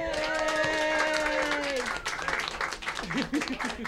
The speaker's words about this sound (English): Thanks for everyone who came out. Thanks to the 10th Street. Thanks, of course, to StoryFort. Separate applause for StoryFort